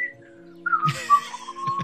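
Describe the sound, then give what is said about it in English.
A short whistled phrase, gliding downward and then holding a wavering tone, moderately loud over a steady low electrical hum, with no talking. “I just started whistling like”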